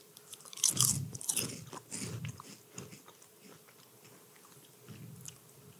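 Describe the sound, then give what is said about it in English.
A crisp chip is bitten with a sharp crunch, followed by several irregular crunchy chews that gradually soften and quiet down, with no talking. “I, right away, just don't really know if it works as a chip.”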